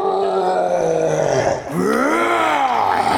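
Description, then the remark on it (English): A man's voice imitates a berserker's roar as it smashes its two battle axes together above its head: a loud, strained, guttural bellow held for over a second, a brief break, then a second roar that swells upward in pitch before sinking. “When this berserker sees you walking up, I think that he actually takes his two battle axes and smashes them together above his head and gives out a...”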